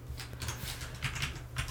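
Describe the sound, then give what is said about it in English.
Loud, clacky computer keyboard typing, a quick irregular run of sharp keystrokes, fairly prominent over a low steady background hum, with no voices. “Your keyboard is so loud, oh my god.”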